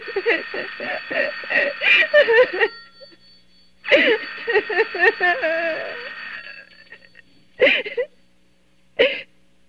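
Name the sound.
telephone ringing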